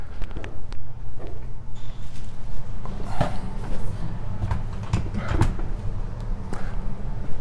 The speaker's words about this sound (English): I'll go ahead and close this door.